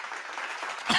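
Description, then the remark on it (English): A short burst of audience clapping welcoming a guest on a show, a dense crackle of many hands that holds steady, then swells louder and brighter in the final moment. No one speaks over it. “Got that clap.”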